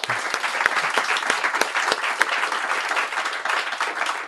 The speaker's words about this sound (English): Big round of applause for our winners.